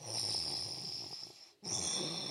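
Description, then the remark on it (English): A woman imitates regular snoring with a long, rough, rattling inhale, a brief pause, then another raspy snore starting up, loud with no words spoken. “Oh, she demonstrating now. So she demonstrating, y'all. That's the regular snoring.”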